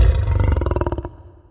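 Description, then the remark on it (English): A lion's deep roar rumbles, then breaks into a rapid series of throaty grunting pulses that fade away over about a second and a half. No one speaks. “Low-frequency sounds trigger fear responses, like rumbling thunder or a lion roar.”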